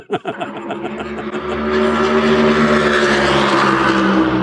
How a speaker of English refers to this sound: And trying to get questions in between the passes of these cars is tough, but these cars sound a little bit louder, a little bit different, a little bit heavier than what I've heard in the past.